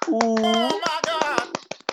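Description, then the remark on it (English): A group does a Japanese clap in quick, sharp bursts, about a dozen crisp hand claps over two seconds, while several voices call out loudly over them. “Everyone, Japanese clap.”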